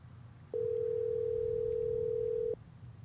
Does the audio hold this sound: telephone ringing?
yes